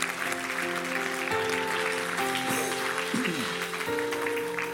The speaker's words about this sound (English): Come on, give him a shout and a clap. Thank you, Lord.